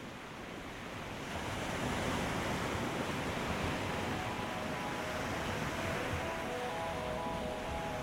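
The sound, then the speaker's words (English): Steady roar of North Sea waves washing onto the coast, a dense continuous rush with gentle swells in intensity and some wind buffeting, with no voices. “Here are some sounds sent from the North Sea.”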